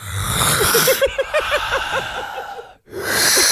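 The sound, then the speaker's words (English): A voice imitates a man's heavy breathing in his sleep, not snoring: a raspy, wheezing rattle of quick rhythmic pulses, fairly loud, broken by a brief pause before another breathy rush. “Because you got to understand, when he breathes, like, he doesn't snore, but it's like, this is the sound it makes.”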